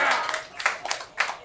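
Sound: audience clapping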